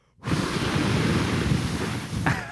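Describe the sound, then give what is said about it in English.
A person blows a steady, breathy whoosh, imitating wind. It's one continuous rushing gust lasting a couple of seconds, loud and alone with no talking. “It's windy in here. I don't know why I did that.”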